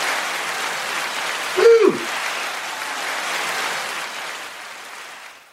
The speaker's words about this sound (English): Hold on, I have an applause thing here. I'm going to add that in. Okay, there we go.